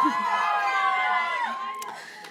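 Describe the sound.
An audience cheers and whoops, many voices overlapping in a loud, sustained burst that tapers slightly over about two seconds, with a couple of sharp claps near the end.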